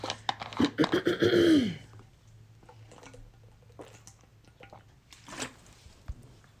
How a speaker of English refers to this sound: But I don't know if I'll have any more today or if I'm just going to go back to water. Which reminds me, I will have some water right now.